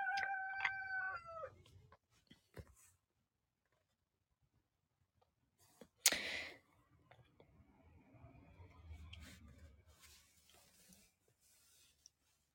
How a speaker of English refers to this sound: Yep, there's the chickens. We knew they were going to go off at some point. We just had to give them time.